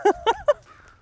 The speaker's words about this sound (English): Ooh. And then there's the crows. And there's the crows.